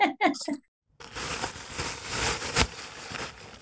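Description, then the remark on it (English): A few quick voiced sounds, then a brief pause and about two and a half seconds of crackly rustling, like a plastic bin bag being handled, imitated by a voice, with one sharper crinkle near the end. “I do have a specialist noise that I made. I want to make the noise.”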